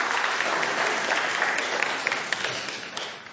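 An audience at a Christmas church service applauds steadily for several seconds as two girls come up to pray, a dense, even wash of clapping with scattered sharper claps standing out, and no talking over it.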